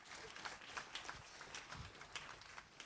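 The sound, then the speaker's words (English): Steady, dense clapping from a crowd giving a clap offering for Adam fills the whole stretch, a continuous crackling patter of many hands at moderate volume with no voices on top. “Give Adam a clap offering.”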